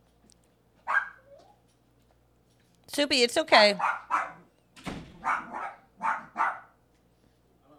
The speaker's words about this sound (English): Please hold. Please hold for dog going wild.